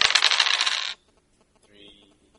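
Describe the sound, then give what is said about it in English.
Four dice clatter and rattle loudly for about a second in a dense burst of clicks as a roll in a tabletop game, then go abruptly quiet, with a faint high tone following shortly after. “Make your roll. Four dice, Bounty Hunter.”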